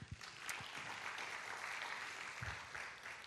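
An audience applauds, with many hands clapping in a dense, steady wash that holds evenly for several seconds, heard from a little distance with no one speaking.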